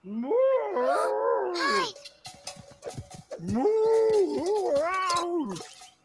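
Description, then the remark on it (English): A wild boar grunts and squeals loudly in two long, drawn-out bursts, with a short stretch of scattered clicks and rustling between them. “It's a wild pig.”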